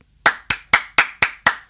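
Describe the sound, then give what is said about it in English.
One person claps their hands six times at a brisk, even pace, applauding Mahershala Ali's award. Each clap is a sharp, bright smack with a short tail, and there is no talking or other sound. The claps are recorded to be layered in post so they sound like three people clapping. “And we'll just take all those and put them over each other so it sounds like three people clapping.”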